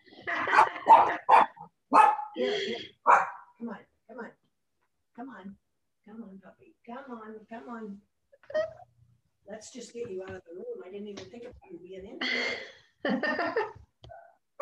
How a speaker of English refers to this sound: Come on, puppy. Let's just get you out of the room. I didn't even think of you being in here. Holy moly. Motivated. So, that dog's telling you about it.